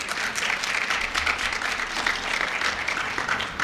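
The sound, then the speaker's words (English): A crowd applauds steadily for a representative of the city of Buffalo's emergency call takers, many hands clapping in a dense, even wash of sound that holds at a constant loud level throughout, with no voices breaking through. “Let's give her a great big round of applause.”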